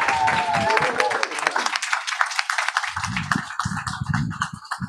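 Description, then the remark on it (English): An audience breaks into sustained applause for a couple invited to share their story, many hands clapping densely and steadily, with voices and cheers mixed in throughout the burst. “So can we give a round of applause”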